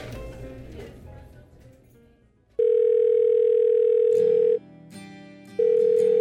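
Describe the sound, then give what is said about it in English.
A phone line rings while waiting for someone to answer: a loud, steady electronic ringback tone sounds for about two seconds, pauses, then starts again, following a brief stretch of muffled background noise. “Pick up. Pick up.”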